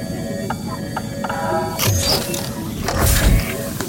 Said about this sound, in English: It's just through these doors, in the communications bay. Now, I'm going to move my hands to open the doors. Give me a moment.